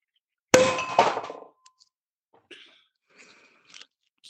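A bottle of wine from France being opened: a sharp, bright clank with a ringing metallic-glassy tone that fades over about a second, followed by a few faint clicks and light scrapes.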